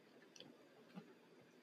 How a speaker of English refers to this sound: I'm chewing again.